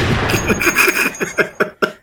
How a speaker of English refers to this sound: Well, you know, I thought it was a flare too until I looked it up and it's like, oh, it's a firecracker, I guess, according to this.